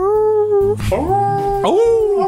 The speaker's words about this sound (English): I hear hounds baying in the distance. I'm hearing a howl.